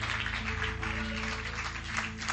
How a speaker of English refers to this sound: Let's clap our hands to the Lord while we're seated.